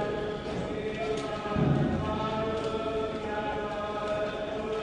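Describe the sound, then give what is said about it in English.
Many overlapping footsteps thud irregularly as a group walks in a line down stairs from the entrance of Puke Ariki to an exhibition, a steady flow of soft knocks and scuffs over a constant tonal hum, with faint murmuring voices mixed in. “The footsteps of everybody following makes it space.”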